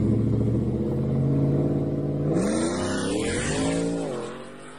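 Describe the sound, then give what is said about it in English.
A four-wheel-drive 2022 Ford F-150 pickup truck in Detroit accelerates hard, its loud engine roar climbing in pitch, dropping briefly at a gear shift midway, then climbing again before easing off at the end. No voices. “So this is the video that DNA High Performance sent me. What's going on here? Four-wheel drive, 21 plus F-150, 22 F-150 in Detroit.”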